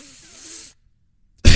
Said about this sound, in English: Coughing up a fucking storm.